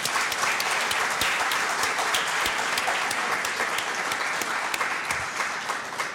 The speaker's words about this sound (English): Please give our panelists a round of applause.